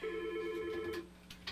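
A single telephone ring of about a second, a steady electronic trill that cuts off and is followed by a couple of faint clicks, as if the line is being picked up, for a caller phoning in to the First City Forum radio call-in show.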